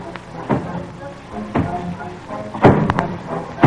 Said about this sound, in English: Say, boss, you hear what I hear? Yeah, thunderstorm coming up. Sounds more like a big fellow walking. Fellow nearly as big as you, boss.